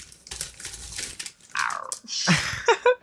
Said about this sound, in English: I'm going to eat some crunchy curls while you're...